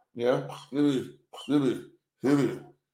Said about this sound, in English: These are the coughs, not the sneezes. There we go. That last one was a sneeze.